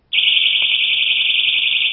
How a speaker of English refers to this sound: you just pull the alarm off of the lanyard. The pin comes right out. And it's a 130 decibel alarm.